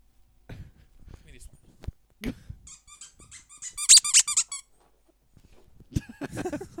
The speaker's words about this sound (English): Get out of it. Stop eating, dog. Dog keeps eating microphone cords. This is why.